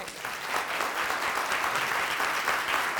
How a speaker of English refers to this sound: They're going to give me a hand clap.